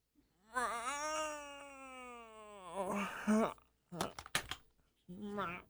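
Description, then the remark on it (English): A person voices a long, drawn-out imitation of a cat's meow, wavering in pitch, followed by a couple of short clicks and a brief second meow-like vocal sound, fairly loud. “The meowing is going to do the exact same thing.”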